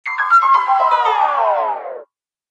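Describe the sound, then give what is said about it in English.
A single bell sound effect, marking round one, rings out with a sharp strike, its bright, layered overtones sustaining and slowly sagging in pitch for about two seconds before stopping abruptly. No voices are heard. “So I think, round one, we'll put in a bell sound effect.”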